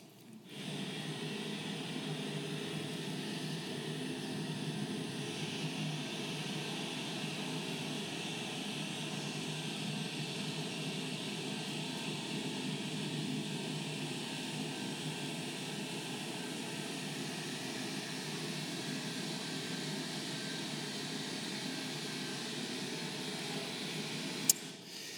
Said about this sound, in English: You see that water shooting out below the dam? It's like a pressure release valve.